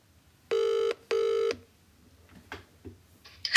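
A phone line rings twice in a quick double burst of bright, buzzy tone as a call is placed to a Trains and Cruises team member for a live quiz game, then goes quiet except for faint clicks and a rustle of line noise at the end.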